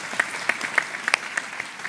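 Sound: audience applause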